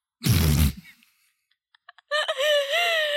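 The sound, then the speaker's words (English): A single sharp, loud hiccup from a woman bursts out, followed by a short quiet gap with faint clicks and then a drawn-out, wavering vocal groan. “Oh, I have a hiccup.”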